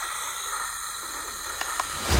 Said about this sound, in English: I can provide sleep sounds if you like. I have several options. Summer night, ocean paradise, whale calls. No, no. White noise is fine.